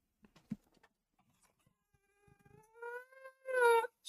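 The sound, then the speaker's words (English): A dog named Archie howls in one long, rising wail that swells louder toward the end, rich and tonal, after a few soft taps and clicks at the start. “My mom says they just sent me a video of Archie howling.”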